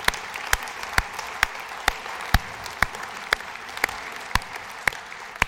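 An audience applauds Jesus steadily, a dense wash of clapping with sharper claps landing in a regular, roughly twice-per-second beat throughout, and no voices over it.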